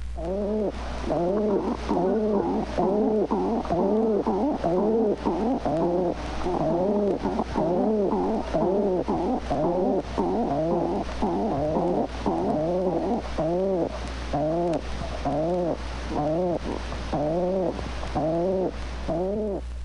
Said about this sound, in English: Both male and female pigeon often converse together at the nest.